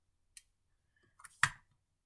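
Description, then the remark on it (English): A quick sip of water: a faint click, a couple of small taps, then a louder brief gulping swallow that fades fast, with no talking. “Before I start, let me take another sip of water.”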